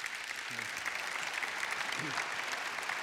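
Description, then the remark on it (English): A church audience gives a steady wash of applause, many hands clapping in a dense, continuous patter, with a couple of brief murmured voices rising faintly underneath. “You don't even clap.”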